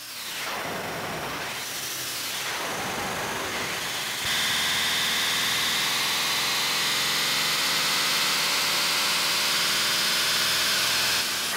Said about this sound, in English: Engine's heating up. Once again, too much flange on this whole thing.